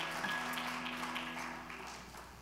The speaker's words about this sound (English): Give the Lord a hand clap of praise as you're being seated this morning.